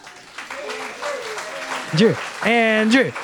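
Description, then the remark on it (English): A church audience claps and cheers for a few seconds during a sermon, steady applause underneath several loud, rising whoops and shouts that swell toward the end. “Can everybody just cheer for Andrew Jennings?”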